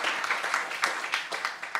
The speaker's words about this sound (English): So thank you guys. Thank you for the audience. Audience, give yourself a round of applause.